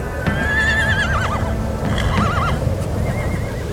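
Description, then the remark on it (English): Horses whinny, two wavering high-pitched neighs rising over a steady rumble of hooves shuffling and stamping on the ground as the horses spin around, waiting to head into a buffalo herd; no one speaking. “But these horses are raring to go too. We're just sitting here waiting, and the horses are spinning around.”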